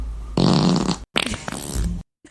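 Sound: fart sound effect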